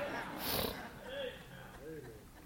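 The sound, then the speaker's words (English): A short, forceful nose blow bursts out near the start, a loud breathy snort with a hissy edge. Faint voice-like murmurs follow quietly in the background. “The more I blow my nose, the more I'm going to appreciate that.”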